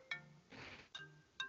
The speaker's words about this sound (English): I think your phone's ringing. Oh, should we answer the phone? Let's answer the phone.